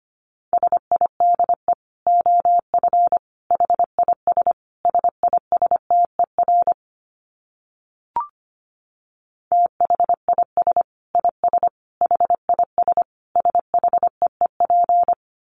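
Fast Morse code at 25 words per minute in a single steady mid-pitched beep, rapid dots and dashes in clustered bursts, broken by a brief pause with a faint click midway, then resuming. No voices.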